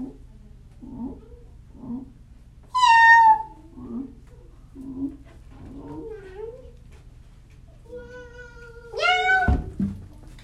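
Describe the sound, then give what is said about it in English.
A voice imitates a cat meowing: two loud, drawn-out meows, one early and one near the end, with softer mewing and murmuring sounds in between over a low steady hum. “and then they went on this big adventure, and they found a mermaid cat that went like this.”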